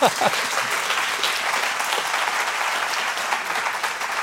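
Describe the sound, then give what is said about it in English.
Steady applause from an audience as a speaker finishes a ministry message, many hands clapping in a dense, even wash of sound that holds at a constant level for several seconds, with a brief vocal burst at the start. “Yeah, you can clap. That's fine.”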